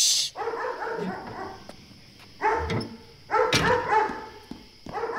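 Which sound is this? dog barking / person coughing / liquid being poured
dog barking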